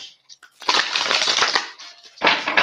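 shuffling tarot cards

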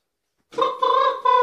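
rooster crowing

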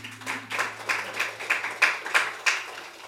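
audience clapping hands

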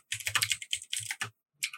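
computer keyboard typing

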